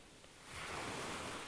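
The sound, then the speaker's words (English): Soft ocean waves wash onto a beach, a broad hiss of surf swelling up and holding steady. Quiet and even, with no voices. “Today, let's focus on the sound of the waves.”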